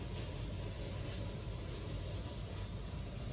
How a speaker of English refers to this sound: And then I look to my left, and there's this huge chunk, part of the airplane, just like missing. And the wind is just extremely loud. There's wind blowing everywhere.